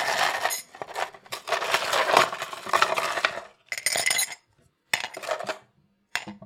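Ice cubes clatter and clink into a cup in a dense, bright rattle for about four seconds, followed by a few shorter bursts of clinking separated by brief silences.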